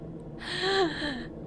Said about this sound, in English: Gasp in horror, surprise over and over. So I figured one would do it. No, that's terrible. Can you imagine that noise just like over and over again?